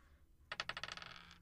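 Dice clatter across a hard table in a quick burst of sharp clicks that speed up and fade as they settle, fairly loud, with no voices; the dice are rolled for an Arcana check.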